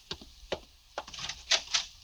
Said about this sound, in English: I open the door for you, Excellency.